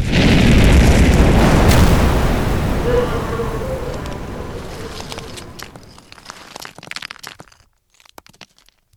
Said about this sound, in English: I was told the explosion could be heard all the way back to Geelong.